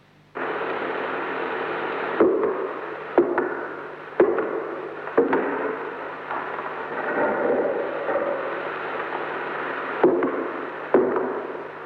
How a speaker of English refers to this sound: If those were footsteps, they must have belonged to a very large and powerful man.